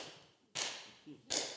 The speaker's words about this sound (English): Some percussion instruments. That's my sarcastic clap, this one is. Don't use a sarcastic clap, people don't like it. But you have percussion instruments. It's why when we worship, we clap our hands sometimes.